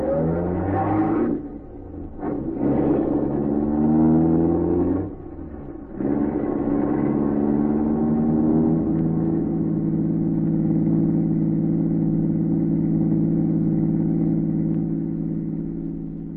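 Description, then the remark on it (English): A car engine revs up loudly a few times in the early morning, then settles into a steady, droning pull as the car pulls away, easing slightly quieter toward the end. “Watched the car as it pulled away.”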